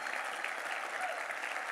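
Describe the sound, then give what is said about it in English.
An audience claps their hands in steady, dense applause, a continuous wash of many overlapping claps at an even, moderately loud level with no voices standing out. “Come on, will you clap your hands for those that made that commitment to him one more time?”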